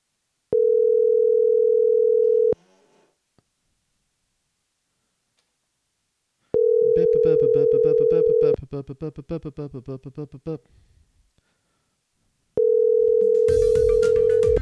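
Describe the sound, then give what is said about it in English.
A phone's outgoing ringback tone repeats three times, each a steady two-second hum followed by about four seconds of pause, with some muffled voice-like sound over and after the second ring. “I'm going to see if he's going to answer the phone.”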